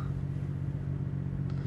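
A steady low engine drone of vehicles, many of them taxis, idling and revving in congested street traffic at a turn onto Queen Street, with a constant rumble and faint clattering on top.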